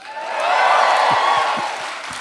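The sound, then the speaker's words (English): A theater crowd at the Wilshire Ebel Theater in Los Angeles cheers and applauds on being told the city, a dense wash of clapping and shouting that swells in the first half second, holds steady and loud, then eases slightly toward the end. “I love being cheered for knowing what city I'm in.”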